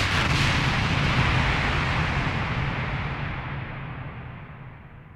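A loud, roaring explosion effect bursts in at full force, then rumbles and slowly fades over several seconds as the crackling top end dies away. No one speaks.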